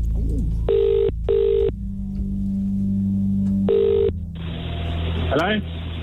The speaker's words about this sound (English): And please answer your phone.